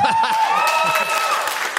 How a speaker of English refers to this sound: I thought we were about to have another woo situation because that woo before the clap was really loud. But then you backed it up with a clap, so it was all right.